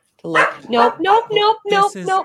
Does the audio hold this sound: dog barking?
yes